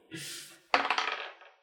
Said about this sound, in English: Oh, that's a nat one. I haven't been rolling very well on this set of dice.